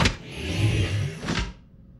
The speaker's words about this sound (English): Vehicle 278, unlock doors. Code is, Alpha Delta 189.